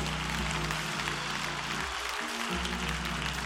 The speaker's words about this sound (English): In the name of Jesus, clap your hands and praise the Lord.